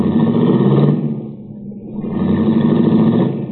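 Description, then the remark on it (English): A baby blue, right-hand-drive foreign convertible's engine roars, dips briefly as it shifts, then revs back up and pulls away loudly into traffic, with steady traffic-like rumble and no voices. “I watched Cookie's baby blue convertible cut out into the traffic.”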